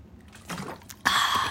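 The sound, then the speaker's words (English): Someone takes a drink of water: a few soft, wet sipping sounds, then a sudden louder, steady rush of liquid gulping that continues to the end. No one speaks. “Wait, water break. I need to drink a little bit of water right now.”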